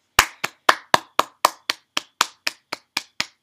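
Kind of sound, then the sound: human body sound, hand clapping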